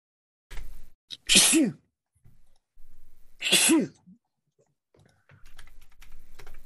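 Two loud sneezes about two seconds apart, each a sharp breathy burst, with faint keyboard clicking before and after them.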